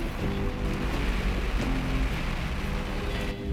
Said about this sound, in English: It's actually raining and it's cold. Can you hear it?